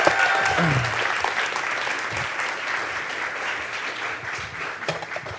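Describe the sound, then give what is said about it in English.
A crowd breaks into sustained applause as a couple is invited up to the stage, a dense, even wash of many hands clapping that holds steady for several seconds, with a few faint voices and whoops mixed in early on. “Can you guys give them a big clap?”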